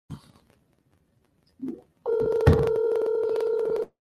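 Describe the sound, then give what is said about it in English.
A steady electronic phone tone from an outgoing call that goes unanswered holds for nearly two seconds, clear and fairly loud, after a short soft bump of noise. No one speaks. “Now Jacqueline ain't answering the phone.”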